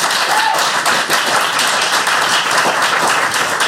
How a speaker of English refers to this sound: So a round of applause for both of our teams.